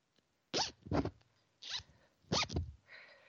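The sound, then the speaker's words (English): A zipper is pulled several times in quick, raspy strokes, fairly loud, with brief pauses between pulls and a softer trailing rasp at the end. “Let me get my zipper here.”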